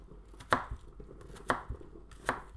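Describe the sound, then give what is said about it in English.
A knife chops through an onion in three sharp, evenly spaced strikes, each with a crisp crunchy attack and a softer thud on the board just after, no voices present. “Okay, I'm trying to be quick cutting the onion”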